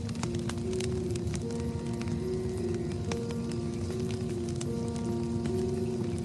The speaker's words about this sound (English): Well, now that we have our drinks and our s'mores, let's huddle around the fire and tell our first campfire story.